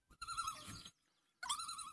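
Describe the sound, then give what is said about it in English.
A loon's tremolo call, given when loons are very excited: a rapid wavering, laughing yodel in two loud bursts separated by a short pause, with no talking. “So this first part is the tremolo, which is another call. And it means that the loons are very excited.”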